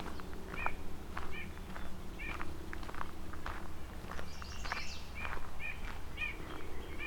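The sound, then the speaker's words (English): Repeated short bird calls and chirps from a yellow warbler and several white-breasted nuthatches, with a quick warbler phrase and nasal nuthatch notes, ring out over a steady low outdoor rumble with faint background movement, early morning at Courtcliffe Park near Carlisle, by a narrow spot on Bronte Creek. “A yellow warbler, white-breast nuthatch.”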